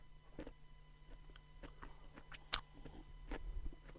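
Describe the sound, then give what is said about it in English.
Crunchy chewing of a pickled onion, a series of irregular wet crunches with one sharp loud bite midway, heard alone without talk. “Well, you can chew it.”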